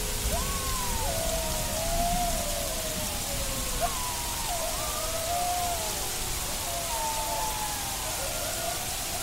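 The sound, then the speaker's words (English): Steady, dense hiss of heavy stormy rain at night, with long wavering wolf howls rising and falling over the downpour. “It was a dark and stormy night on the moors of Lowestoft.”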